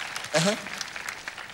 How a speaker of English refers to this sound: Clap for her again. Oh my God.